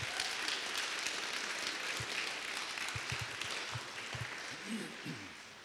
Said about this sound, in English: Give them another hand clap. Thank you.